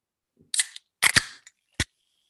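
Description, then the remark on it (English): A few sharp clicks and pops, then a quick fizzy hiss of beer spraying from a just-opened can or bottle onto a microphone, with a final crisp snap after a short pause. “Oh, sprayed my mic a little bit on that.”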